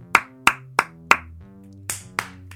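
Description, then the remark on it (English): Six sharp hand claps: four in a steady rhythm, then a short pause and two more. Each clap is crisp and bright, over a soft, steady musical hum. “There is clapping.”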